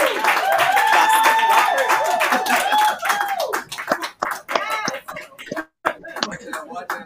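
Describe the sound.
A crowd breaks into loud, dense applause for the CEO of Boujie Boutique, with excited cheering voices over it, then the clapping gradually thins into scattered, uneven claps toward the end.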